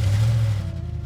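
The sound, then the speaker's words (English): A car engine being cranked up rumbles loud with a steady low drone and a faint higher whine, easing off slightly after a moment. No one speaks. “Yeah, she hops in the car and cranks it up.”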